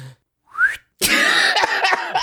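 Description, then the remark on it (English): A short rising whistle glides upward, followed by a longer breathy, wavering stretch that sounds like an attempt at whistling, airy and uneven. “You gotta be able to whistle.”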